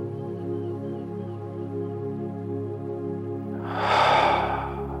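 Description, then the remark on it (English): A single slow, airy breath during a guided breathing meditation swells up and fades away near the end, soft, over a steady, sustained musical drone with no talking. “Breathing in.”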